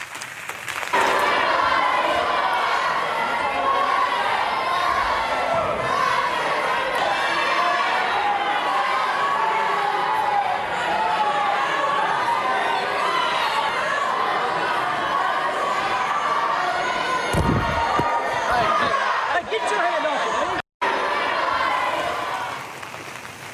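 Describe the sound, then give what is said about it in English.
A loud, continuous crowd commotion with many overlapping shouting voices and agitated chatter during tussling over a cell phone on a House floor, sustained throughout, with a brief cut-out near the end. “Well, take a look at what happened with a cell phone and some tussling right on that House floor.”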